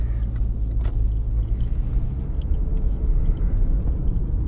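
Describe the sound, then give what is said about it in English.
A steady, heavy low-frequency rumble of road noise from inside a car in very heavy, slow traffic, continuous and even throughout with no voices. “I'm gonna wrap this up because this is some of the worst traffic I've seen in, like, a minute down here.”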